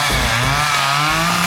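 A chainsaw engine roars loud in a steady, buzzing drone, its pitch shifting slightly as it revs, with no voices.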